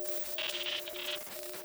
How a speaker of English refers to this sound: You see kind of like these four spidery legs extend out from that silhouette, and one of them raises up and just crashes down on those boxes behind it. And just you see static kind of spill out from it onto the ground.